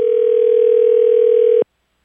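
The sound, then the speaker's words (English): A steady telephone dial tone hums loudly and evenly for about a second and a half during a call to the NBA corporate offices in New York, then cuts off abruptly into silence. No voices are present. “we have called the NBA corporate offices.”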